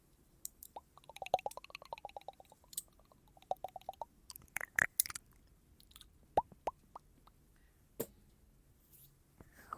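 Wet, clicky ASMR ear-eating mouth sounds in soft style: irregular smacks, licks and sharp tongue clicks with faint chewing, quiet between bursts and with no talking.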